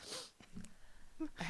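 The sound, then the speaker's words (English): A short, airy sniffle at the start and another near the end from someone fighting a cold, soft breathy bursts through a stuffed-up nose, with quiet background noise between them. “Yeah, what was the sniffle for? I've been fighting like a cold.”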